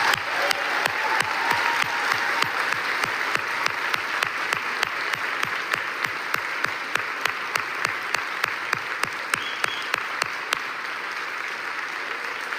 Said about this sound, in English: And I thank them for the time that I had with them today. Can we please applaud them?